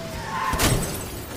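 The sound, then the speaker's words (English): A video game helicopter slams into a house: one sudden crashing impact with a brief shattering burst, heard over a low steady engine drone that fades afterward. “I crashed the heli into the house.”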